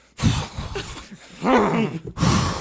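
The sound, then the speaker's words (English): People make low, guttural growling noises with their voices, imitating an animal growl in a few rough bursts, with a brief pause between them. “just like growling.”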